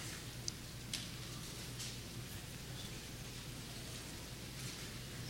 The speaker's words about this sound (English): Is it raining? Is that what I'm hearing? Isn't that nice? Do you guys love storms like I love storms?